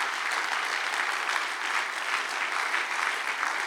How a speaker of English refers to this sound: Oh, let's clap our hands to the Lord this morning.